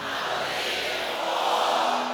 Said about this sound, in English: I want every person in this room to scream back at me, I'm believing for more.